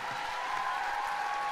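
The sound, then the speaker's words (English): A steady wash of applause from a crowd for a group of women, many hands clapping together in a dense, even patter that holds at a constant level for the whole moment, with no voices over it. “So, come on, can we give these ladies a round of applause?”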